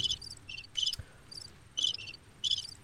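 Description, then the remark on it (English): Crickets chirp in quick, regular bursts, a steady high-pitched trill repeating every half second or so over a quiet background, with one soft thump partway through. “Crickets are going for a while.”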